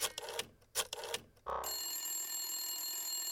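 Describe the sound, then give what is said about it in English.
A telephone rings with a bright, sustained electronic tone after a burst of quick clicks, fairly loud, with no voices. “The little fly grabbed its fly phone and dialed up every fly in the county.”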